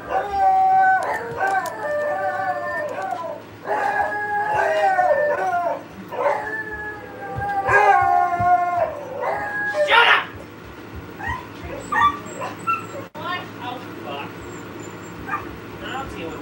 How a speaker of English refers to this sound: And somewhere in the dark, I thought I heard the dog bark.